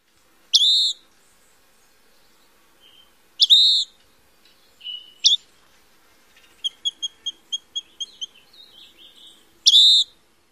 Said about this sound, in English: The most common call is similar to the peewee, but truncated.